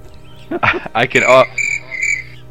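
A cricket chirps in two short, high-pitched bursts, preceded by a louder warbling, voice-like sound; clear against a quiet background.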